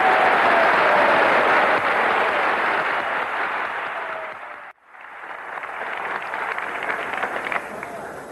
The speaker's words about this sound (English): But tonight, as I was thinking of the toast to propose, before doing so, I would like all of us to join, I think, in a round of applause for the marvelous White House staff and all the service organizations that have put this dinner on.